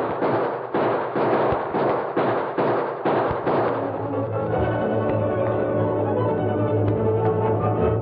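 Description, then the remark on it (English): A rapid volley of sharp gunshots cracks out in a steady, evenly spaced burst for several seconds, then gives way to loud sustained orchestral music. “Webb Nixon's gunmen were taken completely by surprise when their murder plot was upset suddenly by gunfire they hadn't expected.”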